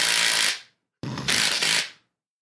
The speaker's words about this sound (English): Speaking of which, I just bought this. This is not a drill. This is a drill. Nice impact wrench or drill. It makes noise.